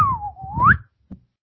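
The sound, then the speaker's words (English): A person whistles a slide-whistle imitation of a fart: one clear tone dipping slightly then sweeping upward in pitch over a rough, breathy rumble, followed by a brief soft thump. “His asshole is like a fucking slide whistle.”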